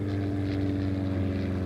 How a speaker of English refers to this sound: The plane rattles and bumps down the runway. Soon it's banking upwards into the clouds.